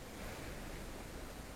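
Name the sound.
water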